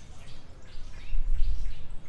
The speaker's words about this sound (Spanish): Pero hace un rato salí a grabar paisajes sonoros. Pareciera que las aves solo cantan así aquí en Tame, oye.